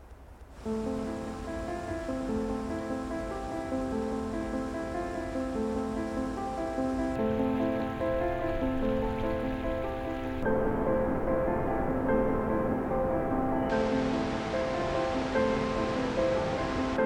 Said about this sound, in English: Flowing water is the pulse of the earth, is the pulse of Yosemite. It's literally a sign that Yosemite is alive.